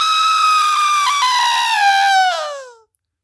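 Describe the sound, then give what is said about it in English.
A fight whistle is tried out: a loud, shrill whistle blown in one long, steady blast of about three seconds, its pitch sagging and fading away at the end. No one speaks. “Okay, so everybody, before we leave here, I do want to try out the fight whistle.”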